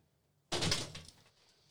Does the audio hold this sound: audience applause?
no